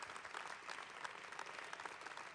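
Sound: audience applauding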